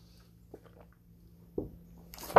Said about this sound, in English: Here you go. Got some glug glug sounds.